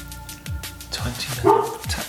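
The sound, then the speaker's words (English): A dog barks several times in quick bursts, with some whimpering yips mixed in over a busy background that includes voices and other sounds. “Dog still knows.”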